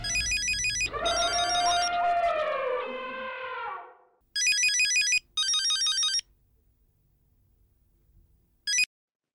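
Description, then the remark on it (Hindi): A telephone rings in repeated electronic bursts during an outgoing call, with a loud harmonic tone sweeping through the middle, then two more short rings and a final brief chirp, clear with no talking. “अब किसे फोन कर रहा है?”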